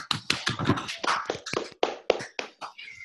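Hands clap in a quick, uneven burst, a dozen or so sharp smacks over three seconds, fairly loud, tapering off at the end, with no talking.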